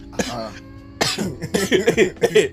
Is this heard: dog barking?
no